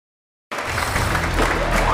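A crowd cheers and claps at the stock market close in a dense, steady roar that bursts in abruptly after a brief silence and holds at full loudness without letting up.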